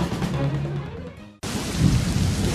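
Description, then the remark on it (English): A deep rolling thunder rumble fades out, then is abruptly cut off by a loud, steady wash of heavy rain pouring down, with no voices present. “This time of year, it seems thunderstorms are an everyday occurrence.”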